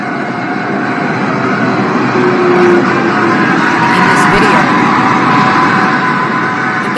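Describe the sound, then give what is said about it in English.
A heavy dump truck rumbles loudly and steadily, its engine droning without a break as it pushes a Mini Cooper along for about half a kilometer up the Gardner Expressway ramp and onto the Gardner, near Coors Key, on a Tuesday morning. “Sound, you can pull that down, Rob, of a dump truck, which is pushing along a Mini Cooper for about half a kilometer up the Gardner Expressway ramp and onto the Gardner.”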